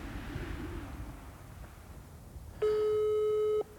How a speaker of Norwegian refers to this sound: Og i et håp om å bevare denne fordelen søkte jeg derfor opp nummeret hennes for å ringe og si at jeg var på vei. Er det rart at hun ikke svarer? Jeg gir det litt til.